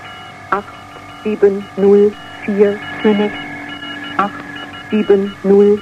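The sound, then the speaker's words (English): Short electronic beeps repeat in irregular pairs and bursts beneath a steady, droning numbers station radio broadcast carrying sustained tones, everything slightly muffled and lo-fi as if picked up over shortwave. “Do you think the beeping in the background is significant as well, Zero?”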